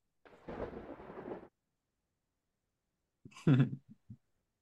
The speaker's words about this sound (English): Of course, I got a coughing fit right in the middle of the lightning round about to come up.